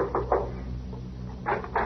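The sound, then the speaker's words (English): Knocking on the wooden door of a big house at night: two quick raps, a pause of about a second, then two more, moderately loud with no voices. “I knocked at the door.”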